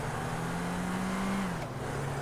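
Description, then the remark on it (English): A video game hatchback's engine drones steadily and loudly, its pitch holding then easing down slightly partway through, with a faint road rush underneath and no one speaking. “Give me your stupid car. This is a nice hatchback.”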